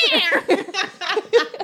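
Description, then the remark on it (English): A person imitates a cat, producing several short, high, wavering vocal bursts in quick succession that sound half like mewing and half like giggling. “I'm afraid it's getting more like a cat.”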